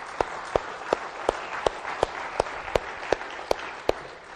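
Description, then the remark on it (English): A church audience applauds in praise of Jesus Christ, with a steady rhythmic beat of about eleven sharp, evenly spaced claps standing out above a continuous wash of scattered clapping. No one speaks. “You can clap for him.”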